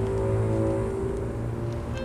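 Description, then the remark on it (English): An SUV engine in the TV show Superboy runs loud with a steady, throaty hum and only slight shifts in pitch, filling the whole two seconds with no one speaking. “Engine's good.”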